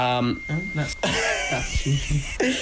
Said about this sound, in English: Phones going off all the time here. Ridiculous. Get him a secretary.